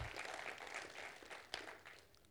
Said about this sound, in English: Can we give our God just a big round of applause?